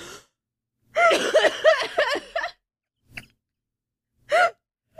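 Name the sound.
coughing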